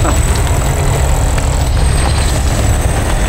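A claw drill rumbles steadily, a deep continuous mechanical roar with a thin high whine riding on top, holding an even loudness throughout with no voices.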